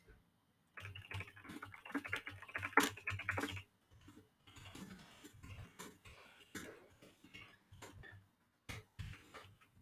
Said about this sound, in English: All right, we've got our linear keyboard up and running, and let's do this typing test. All right, I'm great at these, totally.